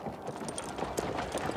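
horse hooves clip-clopping

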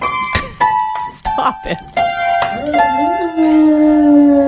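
dog howling along

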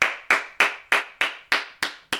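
hand clapping

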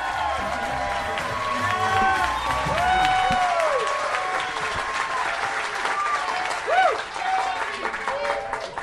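audience applause and cheering

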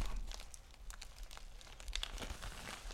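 package being opened

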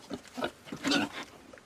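pigs oinking

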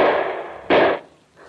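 gunshots

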